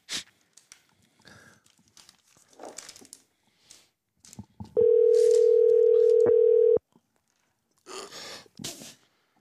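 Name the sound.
telephone dial tone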